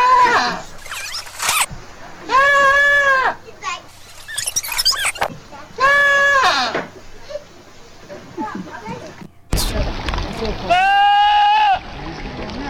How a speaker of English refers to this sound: Let's have a listen to some of the goats yelling like humans. Here we go. This is apparently goats.